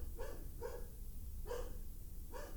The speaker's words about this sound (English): I don't know, dude. He's barking at his food because it won't go in his mouth without him actually fucking eating.